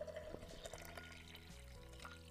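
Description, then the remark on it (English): Pineapple-infused water pours steadily into a glass, a continuous gurgling splash with a rising pitch as the glass fills, with no voices. “A little bit more pineapple water for me here.”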